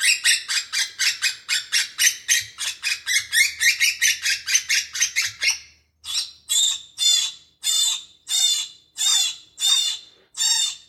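A Hairy Woodpecker calls with a fast run of harsh, squeaky notes, then slows to a series of separate, drawn-out squawks spaced about a second apart. No voices or other sounds.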